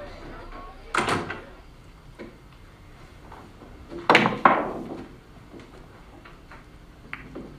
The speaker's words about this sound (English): So this clip starts when the boy opens the door to the basement where the mom is. Have a listen.